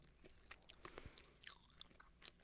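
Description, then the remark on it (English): Moist chewing of banana bread topped with walnuts, eaten by more than one person, with soft irregular smacks and small crunchy bites spread through a quiet background, no voices. “I'm sure your fans are enjoying us chewing.”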